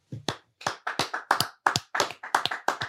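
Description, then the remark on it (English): Hands clap in a quick, slightly uneven burst, a dozen or so sharp claps over a few seconds, like a small group applauding, with no talking. “Clap your hands if you think situation is the same thing as a relationship.”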